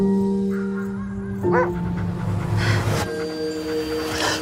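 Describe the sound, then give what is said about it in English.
A wolf pup gives a few high, thin yips and soft whimpers, brief and irregular, over a steady background hum of sustained tones, in a scene from the film The Wolf and the Lion. “You've got a pup.”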